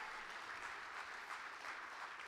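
A crowd claps steadily, a dense wash of many hands beating fast with no clear rhythm, sustained at an even level throughout without voices.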